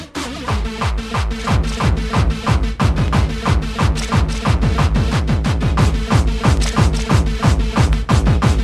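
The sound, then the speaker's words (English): Heavy, steady stomping footsteps thud through an aisle at a brisk, even pace, each impact loud and booming, continuing without pause for several seconds with no voices. “You just gotta stomp your way through the aisle.”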